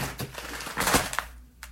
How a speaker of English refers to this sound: I'm going to be doing a promo in the next couple of days where I rip open this container. Do it right now. Rip open this container. Bah! Pull out a whole bunch of foods.